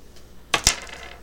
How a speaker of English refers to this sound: Okay. Roll a d20.